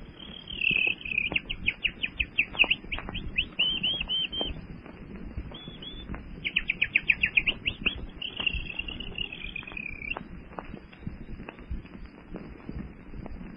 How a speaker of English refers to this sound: Beautiful, Jane. Jungle night, beautiful.